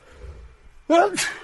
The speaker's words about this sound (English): Oh, jeez. That's a rare sneeze in the podcast. I don't know if I ever sneezed before in the podcast. I'm allergic to happiness and joy.